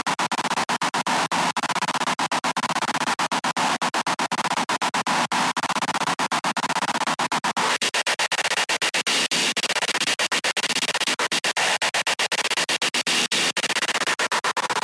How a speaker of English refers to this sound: White noise percussion loop 200.